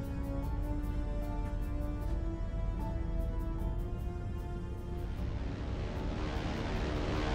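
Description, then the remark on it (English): A propeller aircraft engine drones steadily throughout, a low humming tone with a faint rhythmic pulsing, fairly loud and unbroken, with no voices present. “Oddly, I heard the low, rhythmic drone of a propeller-driven aircraft engine long before it ever occurred to me that our current cruising altitude was most certainly higher than such an engine could effectively function.”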